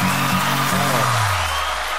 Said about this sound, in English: I love that intro and the applause. It's very, very good.